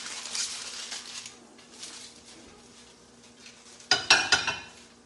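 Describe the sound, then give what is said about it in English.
A thick, hot candy mixture, with flavoring and food coloring added, pours into a prepared pan with a soft, sizzling hiss that fades, followed near the end by a few sharp metallic clanks of a pot or spoon against the pan. No one speaks. “Pour immediately into the prepared pan.”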